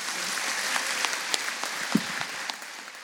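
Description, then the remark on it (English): Steady audience applause for Coach Bill Self at an evening event for the Boys and Girls Club, a dense wash of many hands clapping with a few sharper individual claps popping out, holding an even, moderately loud level throughout. “Let's make a big round of applause Thank for you.”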